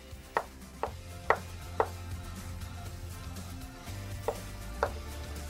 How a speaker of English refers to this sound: So we just cut it up and then we're going to slice that into cubes again. Very similar to the tuna.